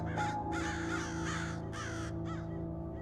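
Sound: crows cawing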